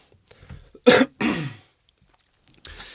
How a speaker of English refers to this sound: I clear my throat sometimes